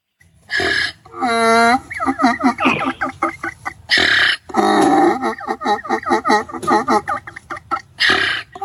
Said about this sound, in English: He's not a singing donkey. He's a laughing donkey. That sounds like he was laughing at us.